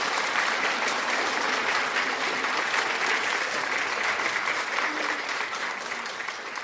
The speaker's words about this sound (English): We thank God that we are all saved. Oh, let's give a big clap unto ourselves that we are all saved. Let's give to ourselves.